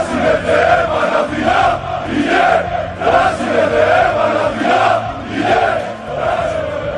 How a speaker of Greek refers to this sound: Φαλτσαριστά η μπάλα και παλιά και το 1-0 από τον Βαγγέλη Βλάχο. Οι φωνές από τους πανηγυρισμούς των φιλάθλων του Τριφυλιού φτάνουν στα αστέρια.